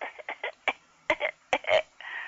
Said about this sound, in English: Got a cough.